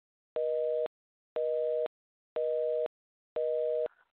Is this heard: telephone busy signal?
yes